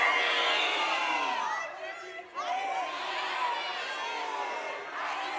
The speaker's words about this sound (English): All right, I'm gonna count to three. Only the shriekers are allowed to shriek, and maybe we can decide where we're going next.